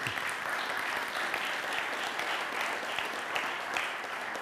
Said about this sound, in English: And our church, yes, we should applaud for each other.